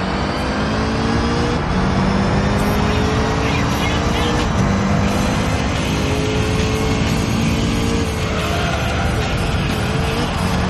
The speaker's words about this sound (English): This is one of those games that's like, it's actually kind of pleasant to listen to just the engine noise. And you know they had to get it right.